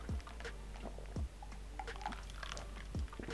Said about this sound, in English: So I chug the whole thing? How do I do this? Just have some. Just a little sip.